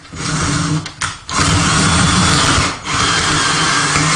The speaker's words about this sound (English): Don't drill it all the way into the table, though. I got it. Those are a little longer than what the 2x4 is.